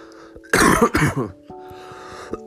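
Two harsh coughs in quick succession from a person who has the sniffles, loud and raspy, with a steady low electrical hum running underneath before and after.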